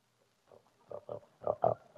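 A pig named Cleopatra grunts several times in quick, uneven succession at feeding time, the snorts growing louder toward the end, with no one speaking.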